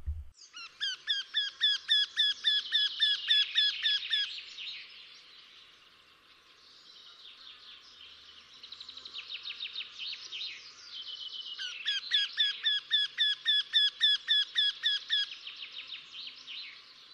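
A Eurasian wryneck sings a fast, loud series of repeated nasal notes, pauses briefly amid softer chatter, then launches into another rapid run of the same ringing calls. No voices.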